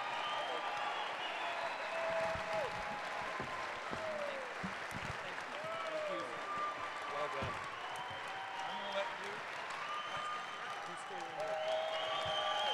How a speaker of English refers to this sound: Put your hands together for these two.